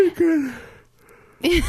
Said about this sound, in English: I'm like literally yawning in every episode